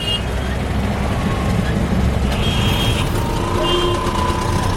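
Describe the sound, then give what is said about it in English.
Dense, continuous roar of busy street traffic in New Delhi, India, with heavy engine rumble from trucks and buses and brief high-pitched beeps and horn tones cutting through now and then. “It has the highest rate in the world, which isn't such a puzzling statistic when you actually experience a day riding around the New Delhi traffic.”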